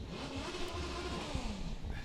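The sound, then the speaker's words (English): A car engine revs nearby at a car show, its pitch rising and falling in a steady, throaty roar that fills the short stretch without pause. “And of course, there's a car show. Hear there are people. We're right next to the car show this year.”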